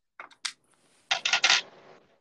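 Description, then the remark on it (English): Various metallic coins, not just pennies, clink and jingle inside a bag, a few sharp taps at first, then a louder shuffling rattle of several coins that rings out briefly. No voices. “There's a bag of coins. That isn't even, that's various coins.”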